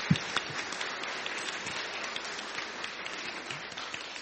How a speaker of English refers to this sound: Well, as we wrap up our service, I think it would be appropriate if we gave a big round of applause to all of our little guys who took part in the service. So let's tell them thank you.